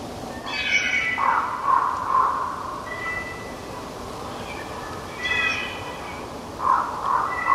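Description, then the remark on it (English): Two packs of wolves converging on each other give soft, breathy whisper-howls just before howling, wavering high-pitched calls that overlap and come in short bursts over a steady background hiss, never swelling into full howls. “That's two packs of wolves converging on each other. I call it whisper howling.”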